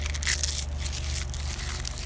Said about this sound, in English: Damn it, I had a leaf and it felt crunchy as hell. Listen to this.